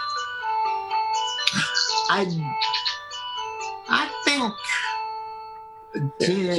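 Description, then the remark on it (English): A phone rings with a steady, melodic electronic tone that continues throughout, while voices make brief murmurs and grunting sounds over it. “Let's let the do you want to get the phone out first and then let's hold on.”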